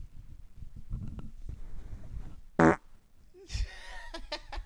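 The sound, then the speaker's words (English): A short, loud, buzzy fart bursts out close to the mic, preceded by low rustling and muffled movement, then followed by a higher squeaky, sputtering trail of sound. “Make sure you subscribe, because real men sniff farts.”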